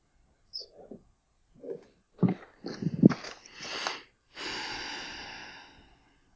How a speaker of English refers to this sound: What's with the heavy breathing? You're exhaling? Commiserating, yeah.